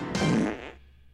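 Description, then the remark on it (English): A single loud, wet-sounding fart sound effect bursts in abruptly, lasting just over half a second with a buzzing, flappy texture before cutting off into quiet. “It always surprises me, even though I know it's going to fart.”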